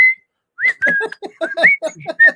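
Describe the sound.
A person whistles a quick, bouncy little tune: a short opening note, a brief pause, then a run of choppy, rising and falling notes in a steady rhythm.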